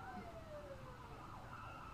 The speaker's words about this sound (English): And there's an ambulance